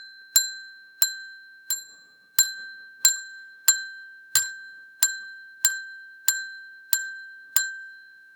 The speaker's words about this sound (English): Let's just get the count out on the bells now so we got it all figured out.